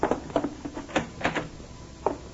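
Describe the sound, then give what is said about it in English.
A closet door being opened: a quick run of rattling clicks and knocks from the handle and latch, a brief pause, then one final sharp clack. “At the closet door. I'll get it.”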